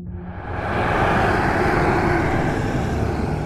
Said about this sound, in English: From that roar comes a blast of wind which sends all the spores kind of dancing about, and in the distance you can make out for a second the visage of this dragon with huge butterfly-like wings with even more spores glowing around those.